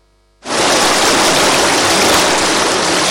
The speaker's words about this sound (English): Sounds of gushing water at the cut-off point here at Abamfu. This is the main road that connects East Town to the capital and other adjoining communities.